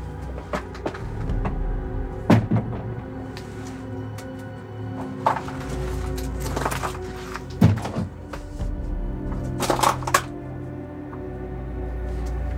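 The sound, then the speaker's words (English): Footsteps crunch and scrape through rubble in a ruined, vacant apartment at 1511 Jackson Street, an irregular series of sharp, gritty impacts over a steady low rumble, with no one speaking. “You can hear it here. Stepping through the rubble, almost like it's been bombed out.”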